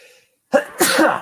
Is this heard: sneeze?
yes